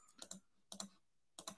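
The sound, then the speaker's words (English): Three quick pairs of sharp computer mouse clicks, evenly spaced, like repeated double-clicks, fairly faint with no one talking, as someone tries to click off running back on a board. “I keep accidentally, I want to click off of running back and I keep clicking on to running back every time.”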